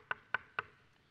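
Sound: knocking on a door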